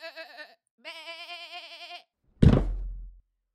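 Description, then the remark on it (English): Young goats bleat twice, a short cry followed by a longer wavering one, then a heavy hollow thud as they brawl and butt into each other by a teeter-totter. Fairly loud, with no talking. “The kids immediately began brawling and butting each other to be the one he would bounce off the teeter-totter first.”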